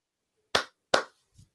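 Two sharp hand claps about a third of a second apart, given as thanks to chat moderators, followed by a softer, muffled tap, with nothing else around them.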